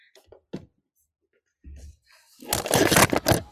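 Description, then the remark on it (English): A few light clicks and a soft thud, then a loud burst of rattling clatter as pens are dropped outdoors and tumble and scatter, lasting about a second before it fades. “Whoop, dropping pens.”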